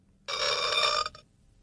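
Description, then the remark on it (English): A single loud, buzzy burp sound effect starts abruptly and holds steady for about a second before cutting off, close up and alone with no talking. “Is that a burp or a frog?”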